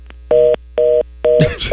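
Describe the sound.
A phone's call-ended tone as the caller hangs up by hitting the red button on the phone: three evenly spaced electronic beeps, fairly loud, the last one cut into as a man starts talking over it.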